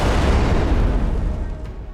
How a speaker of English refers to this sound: Harisa, the fire explodes.